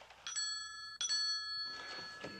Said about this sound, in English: Commodore Schmidlap ringing for his tea.